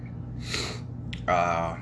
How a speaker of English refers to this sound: Pardon the snuffing of the nose in this, like I said, I'm fighting the sniffles.